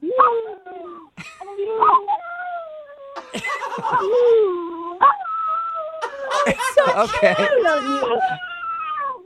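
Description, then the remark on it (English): A dog lets out drawn-out, wavering howl-like vocalizations that mimic the rhythm of the phrase "I love you", loud, interspersed with people talking and laughing. “I can make him say I love you if you want to hear it.”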